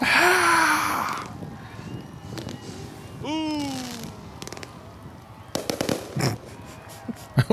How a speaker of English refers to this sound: Lit. Run. All right. Here we go. The fireworks.